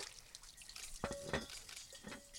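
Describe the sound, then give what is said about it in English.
Spring water pours steadily into a 3-gallon glass jar with a continuous splashing hiss, punctuated by a sharp glass clink that rings briefly, then a few softer knocks, as one filled jar is swapped for the next. No talking. “And so it's gone through lots of rocks and soil and it's kind of, we just finished this one. putting the next one under.”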